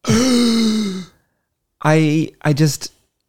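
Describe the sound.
Several people let out a loud, drawn-out gasp together, then a pause and a couple of short, voiced exclamations of mock shock.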